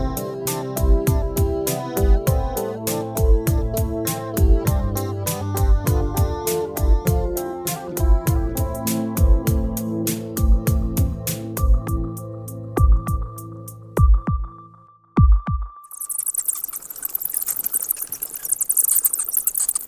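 A plucked, rhythmic musical passage ends abruptly, giving way to bats squeaking as they fly around in the evening, using the squeaks to locate things around them: rapid, shrill, high-pitched chirps in dense fluttering bursts for the last few seconds, with no talking.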